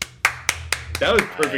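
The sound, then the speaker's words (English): About seven sharp hand claps land in a steady, even rhythm, clapping into the beat drop of a show's intro music, with a low droning tone beneath and a voice murmuring under the later claps. “We used to at least be able to clap into the beat drop.”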